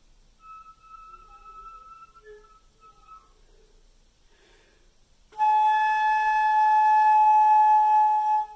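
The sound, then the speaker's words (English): A player alternates between the whistle tone and the full tone of the same note: thin, soft whistle tones waver between a few high pitches, then after a brief breathy pause a loud, rich full tone on the same note is held steadily to the end. “But once you can get a whistle tone on a note, what you're going to do is alternate between the whistle tone and the full tone of that note, trying to play the note softly.”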